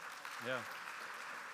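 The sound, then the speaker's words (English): A church service crowd claps steadily throughout for guests on stage, a dense, even patter of applause, with a single short vocal whoop rising above it early on. “Will you give them a round of applause, please?”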